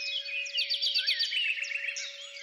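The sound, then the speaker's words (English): A blackbird sings loudly at early morning in the hedgerows and fields of southeast France near Brest, a dense, continuous run of warbling, whistled phrases, prominent, with a faint steady hum running underneath and no voices. “You can distinguish a blackbird singing loudly to wake up the world, and a church bell tolling.”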